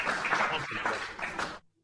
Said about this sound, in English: Well done, class. So I'm going to get a very belated clap in there, you know.